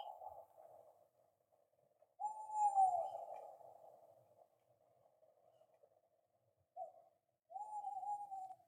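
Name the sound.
owls hooting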